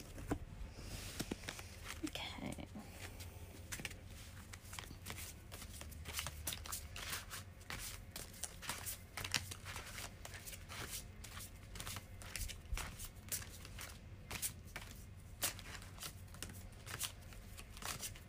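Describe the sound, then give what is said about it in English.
A deck of tarot cards being shuffled, a steady stream of quick papery flicks and slides that carries on unbroken for the whole stretch, with no talking over it. “I'm just gonna shuffle here quick.”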